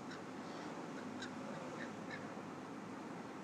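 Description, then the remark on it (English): Crows caw a few times in short, harsh bursts, faint against a steady wash of outdoor background noise. No one speaks. “Q crows.”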